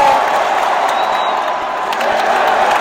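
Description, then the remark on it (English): A large baseball crowd roars in a steady, dense wash of cheering during the sixth inning, with one out and the bases empty; the cheering holds at full volume throughout, with scattered claps and whoops rising from the mass of voices. “What exactly are we cheering about here?”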